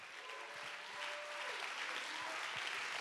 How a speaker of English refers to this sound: Oh, clap your hands and give him praise.